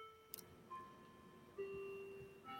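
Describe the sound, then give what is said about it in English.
A clock ticking on its own, with one sharp click followed by soft, steady ringing tones that start up again at roughly one-second intervals. The sound is faint throughout and no one speaks. “Sorry about my noisy clock.”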